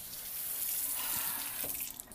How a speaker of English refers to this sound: All right, because I did just spray some water